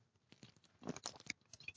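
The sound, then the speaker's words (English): Someone sips water: a quick run of soft, wet mouth clicks and slurps, then a swallow or two, with no talking. “Take some water, sorry.”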